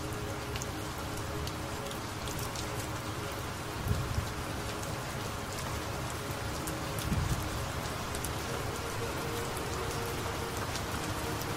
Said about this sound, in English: Your body, mind, and soul is now standing in this rain, being blessed by the divinity to live your life with your highest purpose.